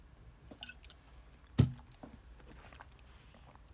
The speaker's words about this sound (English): So let me get a quick drink of water.